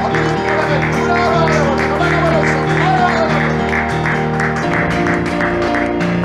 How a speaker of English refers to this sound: If you believe it, put your hands together. Let's kick him out of this place. Oh, let the hallelujah clapping of hands hiss the devil out of this place.